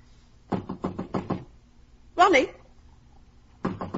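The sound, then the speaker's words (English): A mother knocks five quick times on a locked wooden door in a steady run, followed by a short vocal call, then another burst of knocking begins at the end. “Why, it's locked. The door's locked.”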